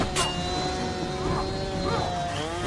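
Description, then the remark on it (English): A chainsaw engine drones loudly and continuously, its pitch surging and dipping in a couple of revs over a few seconds. “So we've got a chainsaw versus a meat hooker.”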